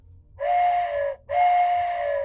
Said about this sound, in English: Keep forgetting to use that stupid whistle. I should be using that at the beginning and then doing the intro.